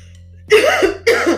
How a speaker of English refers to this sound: Excuse me, y'all. I don't know what just happened, but I don't think I ever coughed on the podcast, that I'm usually professional, but that's not going to be edited out. But don't let that cough get you away from that point I was trying to make.